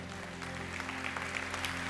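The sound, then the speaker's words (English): An audience applauding together, a steady, dense wash of many hands clapping, with no voices standing out over it. “Clap all you want.”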